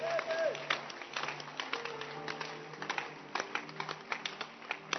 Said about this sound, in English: You can clap your hands.